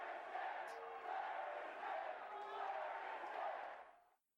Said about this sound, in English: Flair is dead chant.